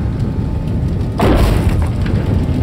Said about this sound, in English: As the roof comes crashing down on us both, I really do mean it.